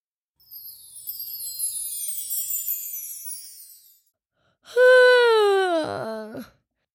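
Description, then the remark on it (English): A drawn-out yawn: a long breathy intake of air followed by a loud, voiced exhale that slides downward in pitch and trails off into a groan. “Oh boy, I'm yawning.”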